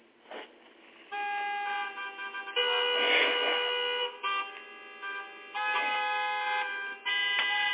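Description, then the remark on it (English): Several car horns honk over one another in sustained, overlapping blasts, with steady harmonic tones cutting in and out over a rumble of traffic, loud throughout with brief gaps between bursts. “And that's what it's going to sound like when you get out there.”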